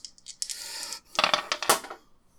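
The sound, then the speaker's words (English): Dice clatter and rattle across a hard table surface, a light rolling patter followed by a louder burst of clicks as they tumble to a stop, landing on a 3 and a 1, with no voices. “That's a 3 and a 1 on the dice, plus my sharp of 1 is 5.”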